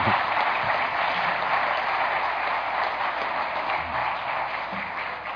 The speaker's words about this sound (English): Let's give the Lord a clap offering, shall we?